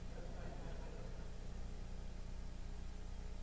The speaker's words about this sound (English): Chrissy, start the car.